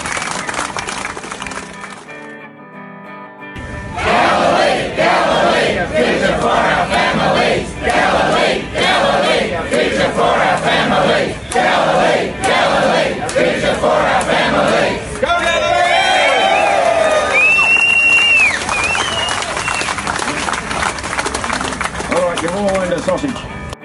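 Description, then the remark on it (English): A large protest crowd shouts and chants loudly in steady rhythmic bursts, with shrill whistles rising over the din toward the end. “We've got brown coal power stations in Victoria that are 40 years old, and that crowd drove past that to get here and protest us.”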